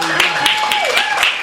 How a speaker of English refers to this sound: Please, let's give her a warm round of applause.